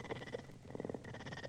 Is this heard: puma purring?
yes